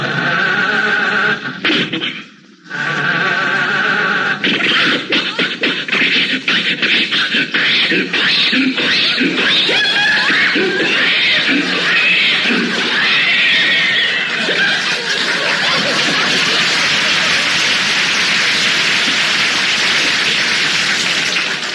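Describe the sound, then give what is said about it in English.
A voice imitates the decrepit motor of a car as Rochester tries to start it: loud, rhythmic coughing sputters and wheezes after a brief pause, building into a harsh, hissing rattle that never catches. “Rochester, what's wrong with the motor?”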